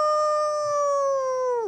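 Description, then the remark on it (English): A person howls like a dog in one long, steady, sustained note that holds its pitch and then drops off sharply at the end, loud with no other sounds around it. “That's a bird dog. That wasn't bad. It sounded more like a wolf.”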